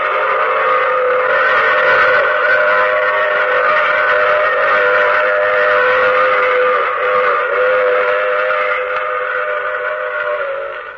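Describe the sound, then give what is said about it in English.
A loud, sustained train whistle wails with steady layered tones over the rumble of a running train, holding for about eleven seconds before fading slightly at the end. “I take this same train every week at this same time.”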